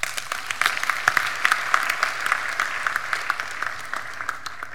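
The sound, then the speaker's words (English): A crowd of ministry supporters applauds themselves steadily, many hands clapping in a dense, continuous patter with sharper individual claps popping out throughout, moderately loud and without any voices over it. “Clap for yourself.”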